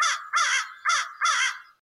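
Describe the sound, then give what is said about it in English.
An American crow gives four loud, harsh caws in a steady rhythm, each call hoarse, with no other sounds around it. “Okay, here's the American crow.”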